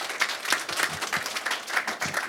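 A crowd applauds steadily, many hands clapping in a dense, sustained patter with faint voices mixed in, holding at a moderate level throughout.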